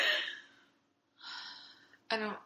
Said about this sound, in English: I feel like I can't breathe through my nose for some reason. I can tell because you, like, are full-on mouth breathing, like... I feel like I can't breathe through my... You're like Darth Vader right now.